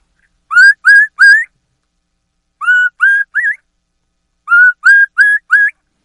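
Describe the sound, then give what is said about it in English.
High, clear whistled notes from a turkey mouth call held in the mouth, played in three groups of three, two, then four rising peeps with short pauses between, fairly loud with no talking. “So you get the high note like this with the call in your mouth. And then say P, P, P with that high note three times.”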